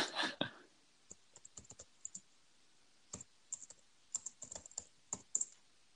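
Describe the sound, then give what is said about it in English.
Typing a search into Google on a computer keyboard: bursts of short, crisp key clicks at an irregular pace, moderately loud, opening with a heavier clatter, with no talking. “I can hear you typing I into am. Google in the background.”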